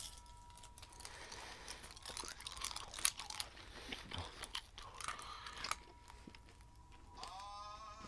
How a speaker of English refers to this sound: We're doing the Skittles Heat Challenge. Guys, this is the Skittles Heat Challenge. You have to throw the ice bucket over your head, then you light your eyebrow on fire, and then you eat the Skittles.